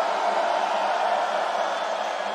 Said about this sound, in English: for this last family photo on the count of one, two, three, scream!